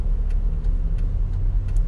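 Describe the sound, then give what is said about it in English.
Steady, low rumble of a truck engine moving through traffic, continuous, with a faint regular ticking repeating every third of a second or so. No one speaks. “I was just watching that truck almost take out half the traffic.”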